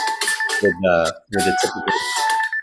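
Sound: phone ringtone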